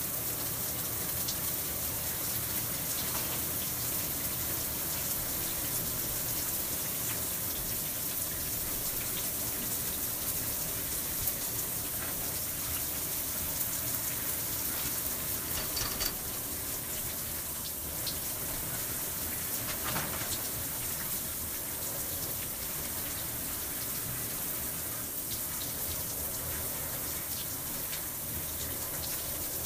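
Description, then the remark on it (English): A steady hiss of running water, a shower spraying and splattering continuously with faint irregular drips and splashes as someone washes their braided hair, with no one speaking. “So, I'm going to put my head in the shower.”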